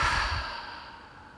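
A deep, exaggerated breath pushed out in one long, airy exhale during a breathing exercise, loudest at the start and gradually fading. No talking.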